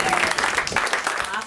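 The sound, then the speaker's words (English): A comedy club audience applauds steadily for a comedian after his set, a dense, even wash of clapping with some voices and cheers mixed in. “All right, have another hand for Brian Cook.”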